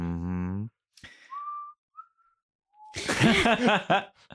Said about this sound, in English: Trying to calm the horse, the man heard a whistle. The sound started out distant, but grew even closer.